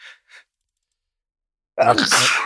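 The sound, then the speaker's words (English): Two short, soft breathy intakes, a pause of silence, then a sudden loud, explosive sneeze with a voiced, harsh edge that trails off over most of a second. “Oh God, sneezing is never normal.”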